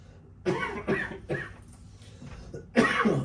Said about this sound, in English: I freaking get all excited and start coughing.